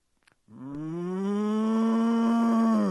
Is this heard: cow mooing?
yes